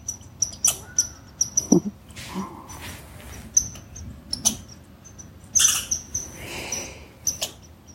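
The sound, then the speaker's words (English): A squirrel gives an alarm call: sharp, high-pitched chips repeated at an irregular pace, with a few louder rasping bursts mixed in and no voices. “Imagine if there was 100 squirrels right now, alarm calling.”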